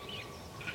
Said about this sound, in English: Swallows and house martin calls.